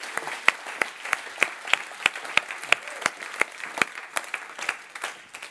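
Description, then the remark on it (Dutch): An audience gives a woman a hand, applauding with a steady wash of many hands clapping and a few sharp, louder claps standing out at a regular beat throughout. “Laten we echt een applaus geven.”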